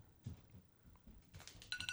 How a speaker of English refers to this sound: That's a good one to end on with the alarms. And now. People have that as their ringtone? The radar.